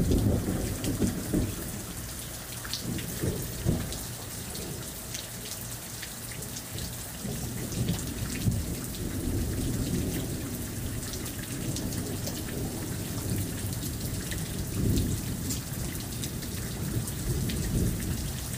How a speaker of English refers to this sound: That is thunder. I thought I would come outside and enjoy the rain and sit in my hammock and feel the cool breeze when just hours earlier it was a wall of heat.